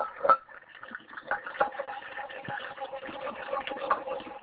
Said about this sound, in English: What are you doing? Are you doing dishes? Sort of.